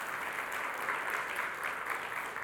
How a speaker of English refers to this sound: Give the Lord a hand clap because it's big.